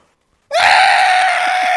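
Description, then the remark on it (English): After a brief silence, someone lets out a loud, raspy, screeching roar that starts abruptly and holds steady to the end, a vocal imitation of Godzilla's roar. “It's really hard to do the Godzilla sound.”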